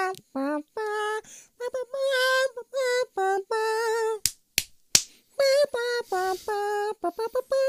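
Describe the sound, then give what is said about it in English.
A man smacks himself in the face as a clap: three sharp, loud smacks land in quick succession, set between stretches of melodic, harmonic humming or wordless singing. “just smacked himself in the face for that clap.”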